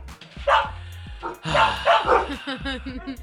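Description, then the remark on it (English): Several dogs bark loudly in an overlapping, agitated burst, with sharp yips and deeper woofs tumbling over one another, and some speech mixed in underneath. “Dogs, we're trying to do a show. I don't care if there's someone walking their dog.”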